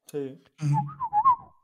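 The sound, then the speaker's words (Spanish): A couple of short voiced sounds, then a clear whistle gliding up and down in pitch over about a second, mimicking the speech-like contours of Silbo Gomero, the whistled language of the island of La Gomera. “¿Sabéis que hay un lenguaje así en la isla?”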